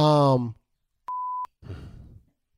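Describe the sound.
A single steady, high-pitched censor bleep, under half a second long, cuts in between snatches of a voice, with a sustained vocal sound before it and breathy vocal noise after.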